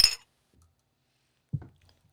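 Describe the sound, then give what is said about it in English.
Shot glasses clink together once in a toast before drinking a shot, sharp with a brief ringing tone, followed by a pause and a soft, low thud like a glass being set down. “So we're going to do a shot right now.”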